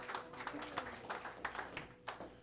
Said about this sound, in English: Let's give him one more last round of applause, ladies and gentlemen.